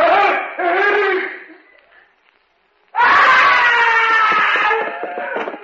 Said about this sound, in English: I heard a scream.